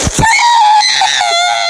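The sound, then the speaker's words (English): A voice acts out Mrs. Gigglesworth's exaggerated sneeze in a sneezing contest: a sharp breathy burst, then a loud, high-pitched, drawn-out squealing tone that wavers slightly before fading out. “And then the other people were questioning the authenticity of her sneeze, but they let it slide.”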